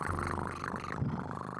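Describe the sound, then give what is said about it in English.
A person imitates a cat's purr with a low, continuous rumbling vocal drone, steady for a couple of seconds with no other sounds around it. “You want to hear what cats sound like when they purr?”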